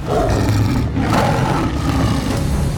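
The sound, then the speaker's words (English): A deep, rumbling big-cat roar from the giant Hrungnir in his saber-toothed tiger form, loud, sustained without a break for nearly three seconds with a gritty, growling texture and no voices. “Hrungnir turned back into his giant saber-toothed tiger form, swatting Thor aside in an instant.”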